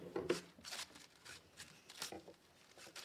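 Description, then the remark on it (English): Several quick, rasping rips of thin newsprint paper being torn, coming in short bursts with brief pauses between them, fairly quiet. “Here's Fidget with his favorite comic book, as represented by these pieces of newsprint. Now watch and see what could happen. Your comics could get torn.”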